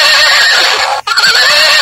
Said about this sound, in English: maybe you have a horse in the back seat. I don't know.